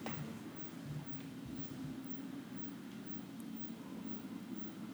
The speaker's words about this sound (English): Yeah, I don't know what that is. Maybe it's like the helicopter looking for someone. I don't know.